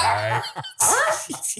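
animal, dog whimpering

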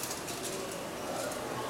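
bird, birds cooing

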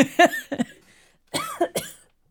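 human body sound, coughing

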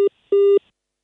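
signal or alarm, telephone busy tone

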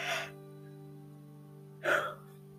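human body sound, yawn

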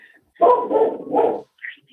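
animal, dog barking

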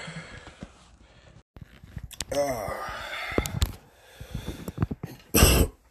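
human body sound, cough into a phone

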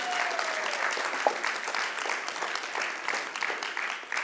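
crowd, round of applause

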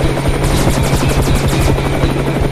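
vehicle, helicopter flying overhead

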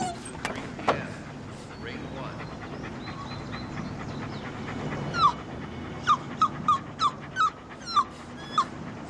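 animal, dogs whimpering and yipping

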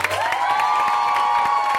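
crowd, audience applause and cheering

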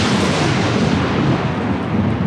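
nature, thunder crash

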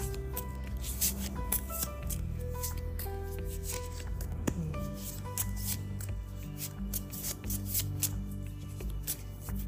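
household object, tarot cards being shuffled

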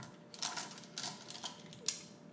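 household object, ten dice being rolled

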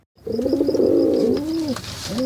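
bird, pigeons cooing

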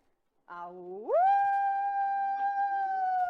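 animal, coyote howling

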